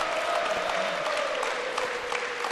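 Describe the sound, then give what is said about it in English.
The Belmont home crowd at a high school volleyball match rises to its feet at set point, clapping and cheering steadily, a dense, continuous roar of applause with scattered individual shouts rising above it, loud throughout. “Belmont's crowd come to their feet.”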